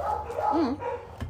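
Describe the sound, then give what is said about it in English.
A dog vocalizes in the background with short, pitched yelps that bend up and down into a whine, moderately loud over a steady low rumble of room noise. “Dogs in the background, fireworks, everything.”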